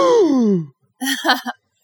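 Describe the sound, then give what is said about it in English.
A man covers his mouth and imitates a dramatic gasp: a loud, falling voiced cry, then after a short pause a rapid series of breathy, sharp intakes, with no other talk. “covered his mouth and gasped.”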